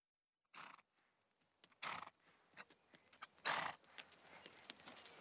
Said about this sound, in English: has rambled over to say hello. Moscow Flyer, one of the greatest steeplechasers of all time